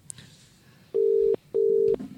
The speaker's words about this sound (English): I'm pressing ring. Righto. We'll hear the ringing, I think. Yeah, listen to that.